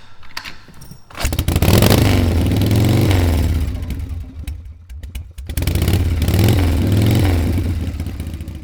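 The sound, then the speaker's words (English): A vintage motorcycle engine fires up after a few quiet clicks and revs loudly, its pitch climbing and falling, easing off briefly before a second strong burst of revving. “It was, dude, it was a fucking beautiful thing to see all those people gathered around vintage motorcycles this weekend.”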